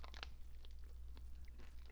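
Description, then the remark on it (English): Someone bites into a melted Dairy Queen Dilly Bar ice cream bar, a few soft crackly crunches and wet chewing bursts scattered over two seconds, with no talking, above a steady low hum. “I'm biting into it.”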